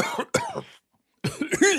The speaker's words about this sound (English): So now you got that in your back pocket, and you, the listener, now know how to do a good stage cough.